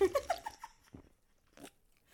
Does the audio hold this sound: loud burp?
no